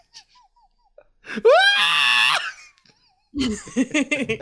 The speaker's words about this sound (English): You know, I like to hear men scream. Do that again.